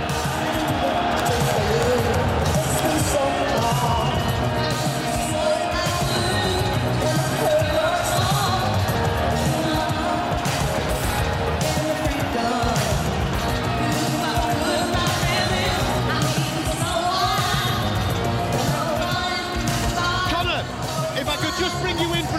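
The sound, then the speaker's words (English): A huge crowd of 20,000 in an arena roars continuously and loudly as boxer Amir Khan makes his way to the top of the ramp to be unveiled, a dense wall of cheering and babbling voices that holds steady for the whole stretch, with echoing arena ambience underneath. “And now, Amir Khan is making his way to the top of the ramp, where he will then be unveiled to this 20,000 strong crowd.”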